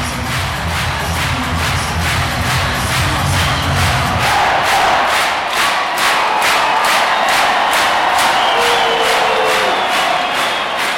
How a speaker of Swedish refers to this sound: Jag vet inte om mikrofonen klarar det här ljudet eller om den exploderar nu, men Henrik Sjöberg, 1959. Växjö kvitterar 1959. Är det säsongens högsta jubel? Ja, det måste det vara.